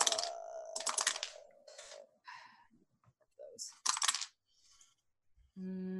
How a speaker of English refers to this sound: In like 1 second. Hold on, I'm digging for dice.